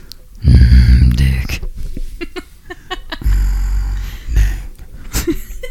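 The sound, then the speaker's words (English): A person imitates a growl, letting out a loud, rough, throaty rumble followed by two shorter guttural bursts, with brief pauses between them. “I think I'm just you gonna growl a little bit.”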